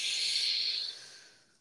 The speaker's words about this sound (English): Breathing in, connecting my heart with the heart of Mother Earth.